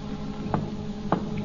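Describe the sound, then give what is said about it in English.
Two soft, dull knocks on the outer door of a gunmen's hangout, about half a second apart, tapped as a signal over a steady low hum with no voices. “Now they hear a signal being tapped on the outer door.”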